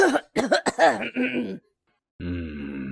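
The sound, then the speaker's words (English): A quick run of harsh coughs and throat-clearing sounds, followed after a short pause by a drawn-out, throaty voiced noise. “And the rest of you were sneezing and coughing.”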